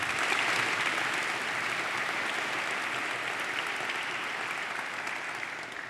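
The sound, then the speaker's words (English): An audience gives the institution a sustained, dense round of applause, steady and fairly loud throughout, with the many individual claps blurring into a continuous crackling wash that eases slightly toward the end. “we owe the president and the chair, we owe the development director, we owe this institution a huge, huge round of applause, please.”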